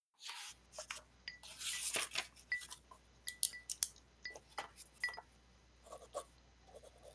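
A pen clicks repeatedly in an irregular pattern, the sharp dry snaps mixed with scratchy rustling and a burst of hiss early on, over a low steady hum and no talking.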